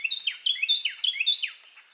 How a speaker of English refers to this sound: Many small birds, like the Carolina wren we're hearing, breed twice in a season, and some of them lay 5 eggs or more in a clutch.